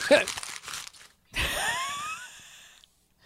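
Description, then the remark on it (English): Brief crackle of a sheet of paper being crumpled and thrown away, followed by a short pause and then a drawn-out vocal sigh or groan with gliding pitch. “I actually need that piece of paper that I just threw.”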